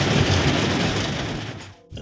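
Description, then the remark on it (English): A loud, steady roar of torrential rain, a dense hiss that fills the whole clip with no voices, easing briefly just before the end and then surging back. “It was torrential rain.”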